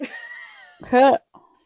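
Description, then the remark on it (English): A cat gives a short, loud meowing cry, harmonic and wavering, followed by a brief faint chirp, with a bit of quieter vocal sound just before it. “I'm gonna kill you, cat.”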